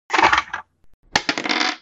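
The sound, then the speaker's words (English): Six-sided dice (d6) rattle and clatter across a hard surface as players each roll one in a tabletop game, in two bright bursts, the second starting with a sharp knock, separated by a short pause with one soft tap. No voices. “So let's have everybody roll a d6.”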